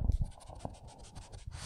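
A Boston Terrier named Milo, in North Hollywood, stands by a person's legs; its toenails tick and click in a quick, uneven series of light taps on a hard floor, with soft low thumps of movement and no talking.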